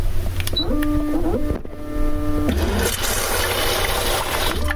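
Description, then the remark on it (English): A bidet seat's motor whirs and clicks in stepped tones as it cleans its spray nozzles, then a steady hiss of water spraying onto a towel takes over, moderately loud. “It cleans the nozzles and stuff when it's done.”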